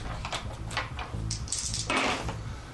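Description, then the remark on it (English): A single die is rolled across a hard tabletop in a short series of sharp clicks and rattles, fairly quiet, with no voices. “Here, I'll just roll one quote dice.”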